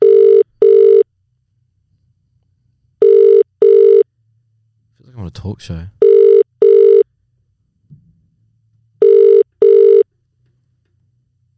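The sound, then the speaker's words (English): A phone call to someone over east, where it is about 9:30, rings out with a steady, mid-pitched double-beep ring-back tone. Four pairs sound evenly spaced a few seconds apart, with a short spoken remark between the rings. “Yeah, I'll give him a buzz.”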